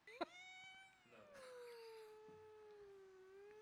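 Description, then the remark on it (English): A cat lets out a long, drawn-out meow that starts high and slides down into a low, sustained wail, with no talking. “No, the cat said I'm not doing it right.”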